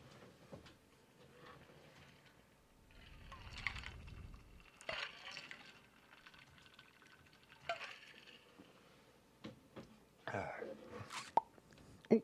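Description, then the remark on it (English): Wet, smacking pops from lips pressed through a damp mustache as water is blown out of it, coming in several irregular bursts with short pauses between them, moderately loud against a soft breathy background. “I was just getting the water out of my mustache and poppity pop, pop, pop.”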